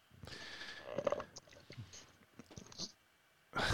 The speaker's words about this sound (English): Slurping. What are you drinking? Anything good? Kool-Aid. Oh, come on. Do you at least have like some good like cheap vodka in there? No, none at all.